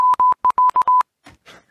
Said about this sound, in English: They're sending in the Morse code.